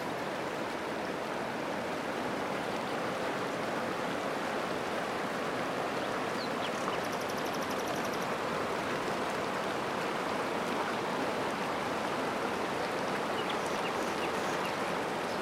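flowing river water

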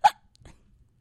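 hiccups

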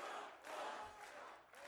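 rally crowd cheering

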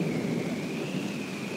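thunder

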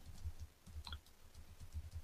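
clicking on a computer

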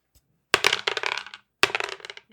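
dice being rolled

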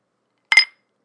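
glasses clinking together

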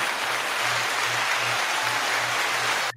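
audience cheering and applause

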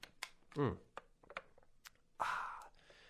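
sipping water

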